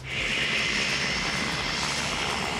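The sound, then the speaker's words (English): A small plane's engine drones steadily and loudly on the airstrip at Milford as passengers finish a flight, a constant roar with a whining edge and no voices, holding for the whole couple of seconds. “And on the airstrip, passengers have just had a flight to remember.”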